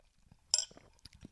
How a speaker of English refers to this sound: I just had a sip of sparkling water with apple cider vinegar in it because it's 6 p.m. Oh, no, 7 p.m.